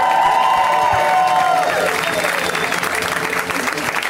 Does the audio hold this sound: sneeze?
no